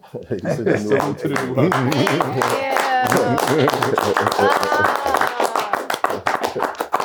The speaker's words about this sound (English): Well, halfway through that clap, you kind of think about Bill, and you'd be like, I said Huxtable.